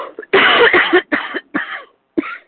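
A harsh coughing fit: one long rasping cough followed by three or four shorter hacking bursts, the last after a brief pause, with no talking.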